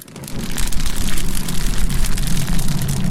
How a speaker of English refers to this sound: Yep, sounds like a roaring, crackling fire. There's just one thing. It's not fire. Whoa. Nope. It's just a small piece of cellophane wrapping I got from some cookies I bought.